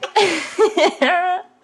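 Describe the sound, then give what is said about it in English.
A loud burp after drinking seltzer: a raspy, voiced belch, then a couple of short gulping bursts and a final drawn-out tonal croak, all in about a second and a half. “Seltzer might have not been the best idea. I am burping up burping.”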